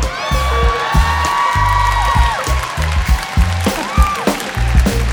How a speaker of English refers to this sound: I've never gotten applause for it before.